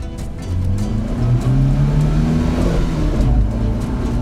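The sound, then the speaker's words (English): A car engine revs up and accelerates, its pitch climbing steadily in a loud, continuous whine that holds strong for several seconds with no voices. “we carry Sean outside. stuffing his limp body into the front seat of my car”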